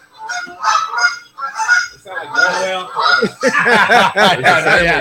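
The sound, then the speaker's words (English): A goose honks and screams loudly, harsh repeated calls that start in short bursts and grow into a nearly continuous, frantic racket toward the end. “Soundtrack there, you screaming Goose.”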